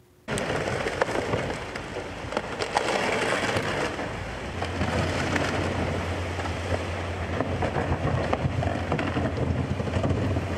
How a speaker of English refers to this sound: Hear the crunching of that hull, right? As the tugboat is pulled 90 degrees off the rocks and into deeper water.